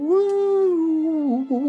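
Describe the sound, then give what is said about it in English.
A person hums a smooth, wavering tone imitating an eerie, theremin-like call of whales calling back, sustained for almost two seconds with a gentle dip and brief break near the end. The voice is steady. “I feel like maybe they sound a bit like a theremin as well.”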